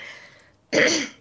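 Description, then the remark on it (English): A single abrupt cough with a raspy throat-clearing quality bursts out loud after a moment of quieter, breathy sound, then trails off. “Sorry, I have a little bit of a cough.”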